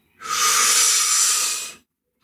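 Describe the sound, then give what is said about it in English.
A single long, forceful blow of air, imitating the big bad wolf blowing a house down: a steady breathy hiss that holds for about a second and a half and then cuts off, with no voices around it. “Be the big bad wolf and blow that house down.”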